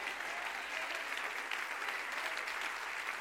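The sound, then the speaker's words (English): An audience applauds steadily, a dense wash of many hands clapping together at an even, sustained loudness for the full few seconds, with no voices standing out. “Clap your hands.”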